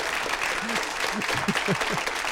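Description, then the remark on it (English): A sampled applause sound effect: steady, dense clapping from a crowd runs throughout at an even level, with a few low voice-like murmurs surfacing beneath it partway through. “Dang, where's that applause sample?”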